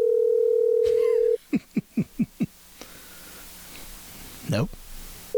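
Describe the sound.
A steady phone dial tone hums, then cuts off into five quick, evenly spaced keypad tones as a number is dialed, followed by a quiet line and a brief, muffled voice near the end.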